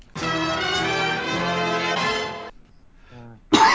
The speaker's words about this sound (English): Oh, goddamn cough. Every time you've coughed tonight has been followed by a damn it.